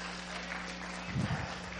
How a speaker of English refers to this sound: Somebody clap your hands, please.